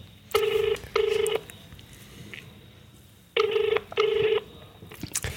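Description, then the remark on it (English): An outgoing call's ringback tone from a mobile phone calling someone in Australia plays twice, each a quick double burst of buzzy ringing with a pause between pairs, heard clearly as if over a phone line, no one speaking. “She's in Australia, and I'm going to give her a call right now because she has an issue and a problem with living in Australia. We are going to solve it. It's ringing.”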